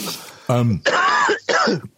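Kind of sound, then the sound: human body sound, coughing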